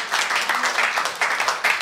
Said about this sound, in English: Now, don't forget, if occasionally you applaud, it takes away my time, so be nice to it. And it doesn't give your dad time afterwards, so don't applaud. You can applaud him when he's done it.